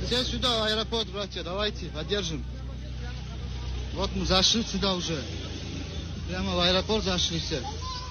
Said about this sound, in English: the pro-Hamas terrorist Nazis supporters surged an airport there, and there was a plane that was coming from Tel Aviv, and they were trying to get onto the plane to get to the Jews, and they were screaming. In fact, we have some sound.